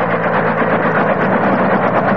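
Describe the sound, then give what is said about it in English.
A helicopter hovers over a large clearing deep in a South American jungle with a loud, steady mechanical roar, a dense wash of engine noise over a low, humming drone that holds constant throughout, with no voices. “The copter is hovering over a large clearing deep in a South American jungle.”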